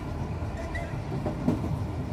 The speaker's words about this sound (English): Mojo suddenly realizes that he's no longer riding a streetcar. He's on a train. How did that happen?